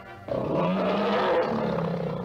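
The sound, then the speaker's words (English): A tiger lets out one loud roar that begins abruptly and holds steady for about two seconds, a deep, rasping growl with no voices around it. “Well, it all started when research people of Humble Oil and Refining Company found out how to put a tiger in Esso Extra gasoline.”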